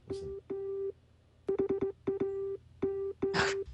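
Morse code beeps in a musical theme: a steady, mid-pitched electronic tone keyed into long dashes and quick dots, punctuated by sharp percussive hits and a brief noisy burst near the end.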